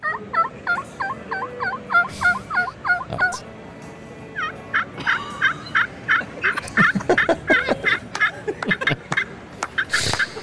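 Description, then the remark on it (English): Two turkey gobble imitations in turn: first a rapid, rhythmic run of warbling gobbles made by a person's mouth alone, with no diaphragm call, then a second bout of gobbling produced with a turkey call, louder and more broken up. “And then the second one is somebody using our turkey call.”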